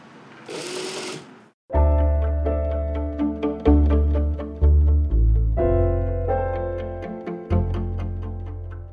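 A brief burst of hissy noise gives way to a sewing machine running steadily, its humming motor overlaid with fast, rhythmic stitching clatter that briefly slows and speeds up. No one speaks.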